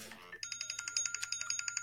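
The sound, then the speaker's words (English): A phone wake-up alarm tone: a fast, steady train of bright, high electronic beeps pulsing evenly, following a brief moment of voice at the start. “No, that's my fucking wake-up alarm sound.”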